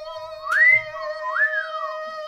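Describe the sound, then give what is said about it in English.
A person whistles a short tune alone, two rising and falling pitch sweeps over a steady held tone, fairly loud, with no talking. “I'll say I was a little pitchy on the whistle”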